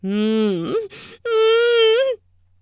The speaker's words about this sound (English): I whimper and moan as you fuck me from behind in the shower, wet skin, smack, smack, smack, smack. Oh, fuck.